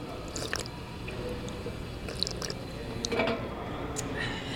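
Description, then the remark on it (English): A drinking fountain on the third floor of City Hall runs in a steady stream with nice water pressure, cool water and a nice flow, while someone takes several small, wet sips and slurps, with faint murmuring in the background. “After tasting the water on the third floor fountain”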